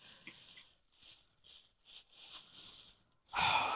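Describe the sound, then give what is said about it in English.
Tissue paper, foam and bubble wrap packing rustle and crinkle in a series of soft handling bursts as a sealed gift package is unwrapped, finishing with a louder, fuller crunch of wrapping being pulled apart. No one speaks. “There's bubble wrap, and now there's like some foam over it. And now there's some tissue paper over it.”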